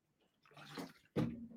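Someone takes a quick drink from a glass of water: a soft watery slosh, then a louder wet gulp near the end, with no talking.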